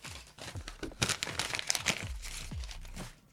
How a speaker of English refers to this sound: That is me checking my notes.